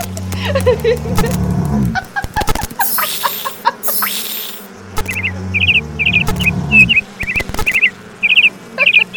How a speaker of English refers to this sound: Oh, it sounds so happy. It must be playing all the happiest bird songs ever recorded.